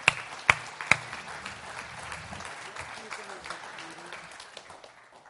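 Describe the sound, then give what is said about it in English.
A church audience breaks into applause for its life group leaders, starting with a few sharp, loud claps before settling into steady, moderate clapping from many hands, with faint voices mixed in. “We need to give these guys an applause because they're fantastic.”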